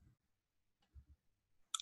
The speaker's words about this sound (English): I'm just typing in like... John McAfee.